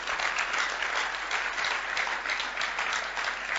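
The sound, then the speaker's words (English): An audience at a church service claps steadily throughout as Kasua North is called, a dense, even patter of many hands with no pauses and no voices standing out above it. “Oh, you're clapping.”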